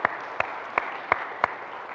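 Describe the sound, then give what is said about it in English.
An audience in a church's recently remodeled worship center applauds steadily, a dense wash of clapping with five sharp, evenly spaced claps standing out at a regular beat. No one speaks over it. “For those who are here, yes, you can say that. You can clap.”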